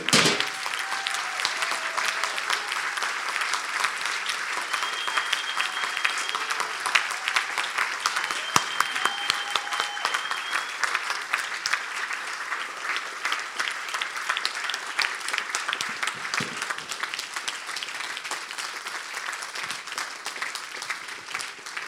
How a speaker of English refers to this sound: And so can you please join me just to stand, and let's give the Lord a round of applause for what he's done in our life.